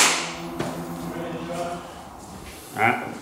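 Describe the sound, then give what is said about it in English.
A single sharp hand clap cuts through briefly while a man keeps talking before and after it, his voice steady and conversational throughout. “Clap in his ear hole.”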